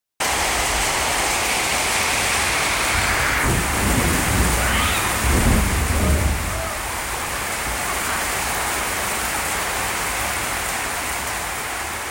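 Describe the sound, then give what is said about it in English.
Steady, heavy rain hisses across the whole recording at night in Nepal, with a deep rumble of thunder swelling in the middle before fading back into the downpour. No voices are heard. “I'm going to go ahead and play the sound of that rain.”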